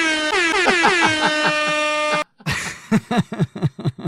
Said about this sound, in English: I can't imagine a more joyous sound than that fucking horn. It makes me so happy.